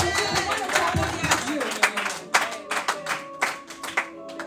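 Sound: audience clapping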